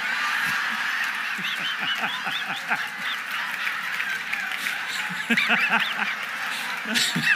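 A flock of ducks quacking in a busy, overlapping chorus, with many calls tumbling over one another continuously at steady volume.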